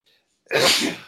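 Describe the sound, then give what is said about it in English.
A single loud sneeze bursts out after a faint sharp intake of breath, a broad noisy blast that lasts about half a second before trailing off. “Bless you.”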